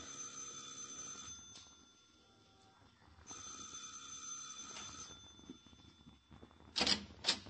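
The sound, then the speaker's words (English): A doorbell, rung by police officers calling at a home, rings twice in long, steady, buzzing bursts separated by a short pause, followed by a couple of sharp clicks at the end. No one speaks. “Now, you ring the bell”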